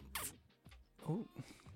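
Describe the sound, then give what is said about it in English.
Wet lip noises made with the mouth: a quick crackly smack, then a second cluster of popping, buzzy lip sounds after a short pause. “What was that one? That was neither. Those are my lips.”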